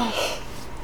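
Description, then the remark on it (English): A short, breathy yawn: a brief voiced, low-pitched groan at the start that quickly trails off into a soft, airy exhale, heard on its own without talking. “Had to yawn.”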